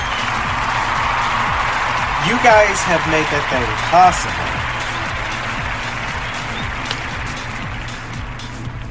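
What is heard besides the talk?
audience applause and cheering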